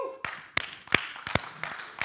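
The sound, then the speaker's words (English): An audience in a church claps in a loose, scattered way: sharp, irregular hand claps at moderate loudness over about two seconds, with no one talking. “Wait, can you clap in church?”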